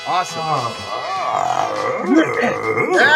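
An animal growls and grumbles steadily for about three seconds, a low rumble overlaid with whiny, rising-and-falling vocal tones that swell louder near the end.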